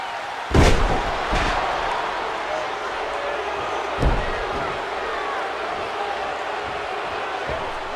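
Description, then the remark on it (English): A wrestler crashes onto the ring mat from a belly-to-back move with a loud, booming slam, followed by a softer thump and a later single thud, all over a steady roar of crowd noise at a wrestling match in Texas featuring Flying Brian Pillman and Barry Windham. “Into a belly to back. Boom.”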